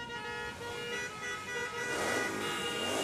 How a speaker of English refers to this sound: That should get the motors running. On a hot New York day. Yeah. What more do you want than 30 motorcycles in front of you? No, I'm pretty good with this. Revving up with the exhaust. I love it. Come on, High Riders, let's hear it.